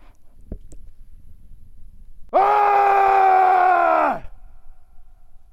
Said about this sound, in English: Just gonna plant my feet, take a deep breath, and I think I'm gonna make like an ah sound. We'll see how that sounds, if that feels right.